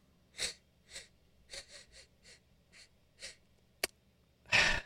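A rapid series of short, breathy nasal sniffs, about eight quick intakes in an uneven rhythm, exaggerated, followed by a sharp click and a louder, longer final snort.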